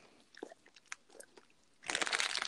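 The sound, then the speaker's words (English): Chewing of popcorn: scattered small crunches at first, then a loud, dense burst of crunching near the end as a mouthful is bitten down, with no voices. “I'm just gonna hurry and eat this popcorn because she's attacking me.”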